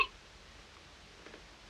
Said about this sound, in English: I have the hiccups.